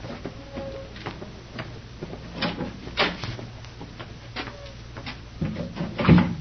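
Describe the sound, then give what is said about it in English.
A door is opened with a series of wooden clunks and rattles, a few sharp knocks spread over several seconds and the loudest thud coming at the end, with no one speaking. “I'll go ahead and open the door.”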